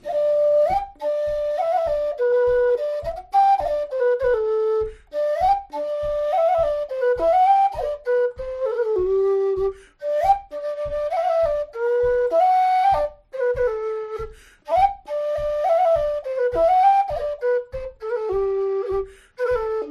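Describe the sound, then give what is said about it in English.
A tin whistle plays The Bush, a tune from Walsh's Caledonian Country Dance, solo: a lively, bouncy dance tune with quick ornamented notes over a steady rhythmic pulse, clear with no voices. “Anyway, here's another tune from Walsh's Caledonian Country Dance, this time on whistle.”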